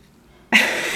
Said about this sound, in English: I think that you should leave that in. No. There's a very long pause for a yawn. Everyone, if you leave that in, I promise you every person listening just, like, looked at their phone and was like, why did it cut off?